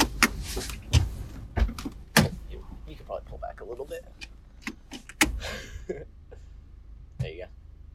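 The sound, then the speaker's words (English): A car door clunks and rattles open at a McDonald's drive-thru window, opened because the car window is frozen, with several sharp knocks and handling noises spread over a few seconds amid low engine rumble and faint muffled voices. “Yeah, I just had the door open and like my window is frozen, so I can't like properly interact with these people.”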